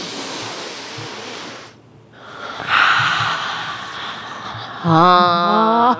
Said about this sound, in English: Okay, so today's ASMR sound day is deep breathing. Together? Yes, together. Okay. Three in and three out.